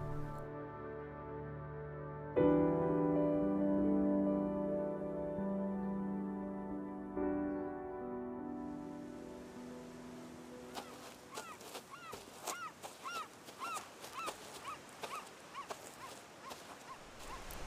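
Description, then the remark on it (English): Humpback whale song recorded underwater in the waters off Maui, where the whales return from Alaska for winter: long, droning harmonic moans that shift pitch in steps, then a rapid, uneven series of squeaky upswept whoops and pulses, with no talking. “I vividly remember my first time hearing these whales underwater. The songs of the humpback whales, much like these gentle mammals themselves, are magical and hypnotizing.”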